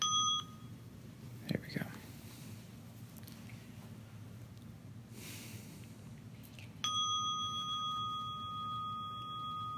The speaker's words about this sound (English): Okay, so we'll sit. I'm starting the bell here.